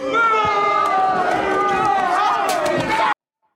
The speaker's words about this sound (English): Instead of being rude fucks and booing me, you properly educate me on what a game engine is, you dicks and dickette for the lady out there.